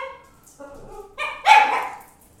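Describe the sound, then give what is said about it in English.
A dog lets out four quick, high-pitched barks in rapid succession, each louder than the last, ending in a sharp, raspy bark with no voices. “We got a dog that's gonna freaking.”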